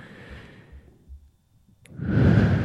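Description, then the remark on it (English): A person mimics slow, sleepy breathing: a long, soft breathy exhale trails into a brief silence, then a louder, fuller inhale follows. No words are spoken. “Your breathing rate slows down too.”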